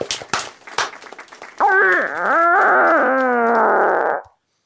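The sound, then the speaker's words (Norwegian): A recorded fart, the winning entry, fart number two called Flying Winds, in a fart contest with 87 points: a few sharp sputtering pops, then a long, loud, squealing fart that whines and wavers up and down in pitch for a couple of seconds before cutting off. “Ja, men, ja, og vinneren da fis nummer to, Flying Winds, med under kommentar Cry Baby, med sine 87 poeng.”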